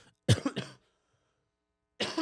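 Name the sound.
cough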